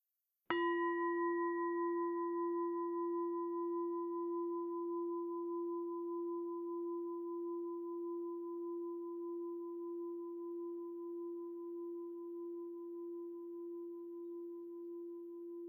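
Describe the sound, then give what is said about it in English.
A meditation bell is struck once at the start of a guided meditation, giving a warm, low tone with a brighter ring above it that hums steadily and fades only slowly over about fifteen seconds. No one speaks. “I am going to invite the bells, and I would like you to focus on the sound of the bells as well as you can.”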